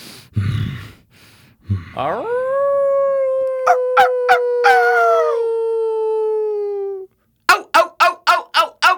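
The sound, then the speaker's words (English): A person does a long, loud wolf howl, rising then holding a steady drawn-out note for several seconds, followed by a quick series of short yelping barks. “Oh, are you turning into something? You're turning into a gay wolf.”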